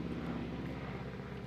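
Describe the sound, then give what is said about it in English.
A steady low rumble of a helicopter flying outside a window, its engine drone fairly loud and constant throughout, heard from indoors with no one talking. “There was just like a helicopter flying outside my window.”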